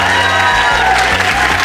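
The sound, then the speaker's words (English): An audience at the Leicester Square Theatre breaks into loud, sustained applause with cheering mixed in for Mary Beard. A dense, steady wash of clapping holds at full strength for the whole stretch, with no one speaking. “Ladies and gentlemen, please give it up for the fantastic Mary Beard.”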